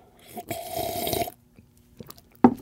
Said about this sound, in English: Check out the Barking Dog Espresso coffee that we are sipping on today. One more sip.